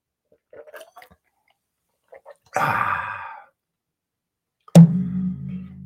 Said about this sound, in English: Excuse me, instead of coughing in your face, I'm just going to drink a little water. Water.